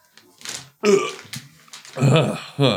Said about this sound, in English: Sorry, I burped.